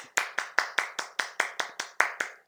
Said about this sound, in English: Let me just clap.